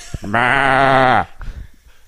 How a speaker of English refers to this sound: That's the intellectual goat.